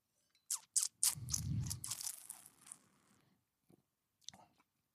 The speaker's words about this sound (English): I mean, this tastes to me like a real deal Chardonnay. It's a young Chardonnay. I don't think it has all the malolactic and the anise and all the things you get in the more expensive ones. But let me take a sip.